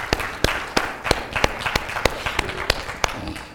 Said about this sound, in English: So since nobody's being eulogized this morning, why don't we give God a hand clap of praise? Amen.